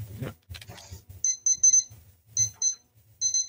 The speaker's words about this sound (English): Beep, beep, beep, beep, the Compi's discovered electronics.